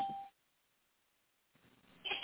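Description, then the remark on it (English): A single short electronic beep, a steady mid-pitched tone lasting under half a second, followed by silence and then faint background sound building toward the end. “And we'll be right back. Beep.”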